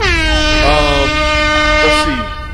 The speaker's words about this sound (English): Air horns. Yep. There we go.